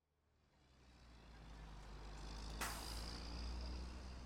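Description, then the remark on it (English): The last bus home approaches with a deep, growing engine drone, then lets out a sudden sharp hiss of air brakes, followed by a softer lingering hiss as it idles. “The last bus home was punctual for a change.”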